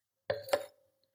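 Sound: wine glasses clinking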